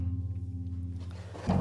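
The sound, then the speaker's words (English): A door opens: after a steady low hum, a sudden louder burst of noise arrives near the end as the door swings open. No one speaks. “Oh man, it's a door right, opening.”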